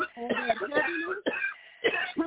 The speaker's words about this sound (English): Take a deep breath and cough that out. Cough it out of you in the name of Jesus.